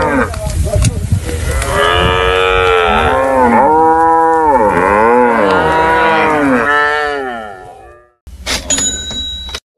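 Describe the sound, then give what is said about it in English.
Ankole cattle moo loudly in one long, wavering bellow lasting several seconds, then it cuts off abruptly to a brief burst of bright, chiming tones. “widespread attention to the cattle.”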